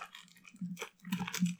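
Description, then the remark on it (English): Someone chews caramel puff candies with irregular, sticky smacking and crunching bursts and a low, muffled thump beneath, growing louder in the second half. No one speaks. “This is just me eating them for 3 minutes.”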